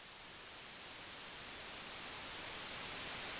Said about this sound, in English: She was static. She's the static. When you don't have a strong signal on the TV, that's her.